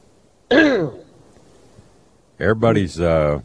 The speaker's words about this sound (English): Everybody's hawking and coughing and clearing their throats. I mean, I ain't never seen anything like it. I've been fighting it for a while now. I don't know whether it's just fall allergies or what.